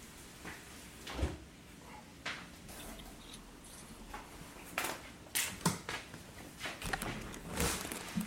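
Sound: window being closed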